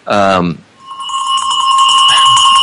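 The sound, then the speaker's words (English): A short voiced sound opens, then a bell rings out with a bright, sustained metallic tone, staying steady and fairly loud for the rest of the couple of seconds. “That's a bell.”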